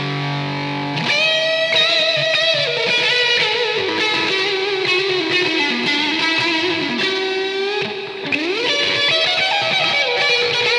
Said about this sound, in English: So I've changed to that lead channel, and that's not the best rhythm sound, but it's a lead sound. So that's probably why. I'm going to put on a bit of reverb and delay and play some very sloppy lead guitar for you right now.